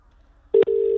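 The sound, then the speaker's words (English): After a moment of near silence, a steady electronic ring tone sounds over a phone line, briefly interrupted by a click before the tone resumes, fairly loud and with no voices. “Is it ringing?”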